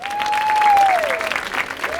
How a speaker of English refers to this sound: Thanks very much for that entirely undeserved applause. A bit later on, I'll be bringing on some people who do deserve your applause for making John Wick, the film we're here to talk about today.